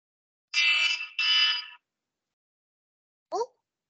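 An alarm blares in two loud, harsh bursts of about half a second each, then falls silent before a brief, faint chirp near the end. No one speaks.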